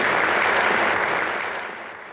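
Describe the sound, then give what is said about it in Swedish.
After Hattie's acceptance speech, the audience, including her co-stars Vivien Leigh and Clark Gable at their table nearest the stage, applauds steadily. A dense wash of many hands clapping at once stays loud before easing off slightly toward the end. No voices are heard over it. “När Hattie hållit sitt tacktal applåderar hennes medskådespelare Vivien Leigh och Clark Gable från sitt bord närmast scenen.”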